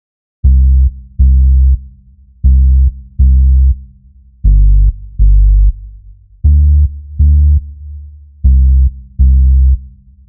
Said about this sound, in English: And then finally, we bring in some warm bass sound just to underpin the whole track. It's based on a sine wave, which is a very neutral tone, and that just adds to the comfort and the sense of being at ease throughout the track.